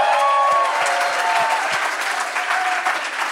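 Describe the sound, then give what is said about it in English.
A crowd at Cornerstone Church in Atlanta applauds loudly and steadily, a dense wash of clapping that holds for a few seconds, with some cheers and whoops rising above it. “So can we give it up for Cornerstone Church?”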